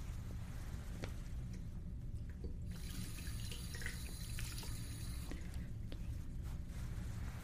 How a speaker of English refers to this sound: So let me wash my hands.